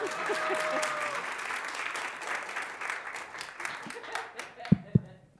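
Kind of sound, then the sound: crowd, audience applauding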